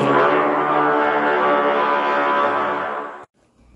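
A phone alert goes off, a loud, steady buzzing tone rich in harmonics that holds for about three seconds and then cuts off abruptly. No one speaks over it.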